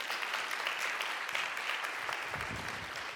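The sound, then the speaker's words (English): An audience applauds for the band that leads them in worship, a steady, dense wash of many hands clapping at once that holds evenly for about three seconds without pausing or swelling. “they don't do it for us to clap for them”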